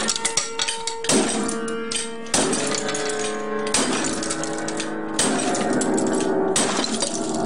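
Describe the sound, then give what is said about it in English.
Heavy blows from a giant wrench crash into a little upright piano, each loud strike sending its strings into a jangling, sustained clang; about five or six smashes land at irregular intervals with no voices. “He videotaped himself holding up a giant wrench in front of a little upright piano.”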